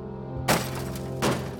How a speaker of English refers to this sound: The SS officers smashed all of the machines in Gerlich's office and destroyed every scrap of paper in the building, including the draft of Gerlich's explosive cover story.